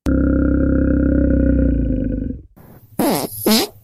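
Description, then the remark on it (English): A long, loud, low-pitched fart from bears rumbles steadily for over two seconds, then after a short pause come two rough, growling grunts from the bears in a studio. No one speaks. “No, even worse, farting bears.”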